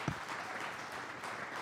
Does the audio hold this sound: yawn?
no